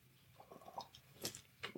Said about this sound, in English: A little sip of my Oktoberfest beer here.